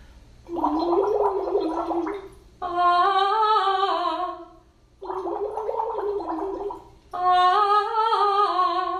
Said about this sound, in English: We've done this before, so this time let's add a cup of water. We're going to blow bubbles while singing into the straws, and then sing, trying to maintain the same feeling.